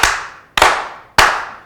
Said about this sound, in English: Now, before we get all into this man's business, can we begin by slow clapping this brother in? Yeah.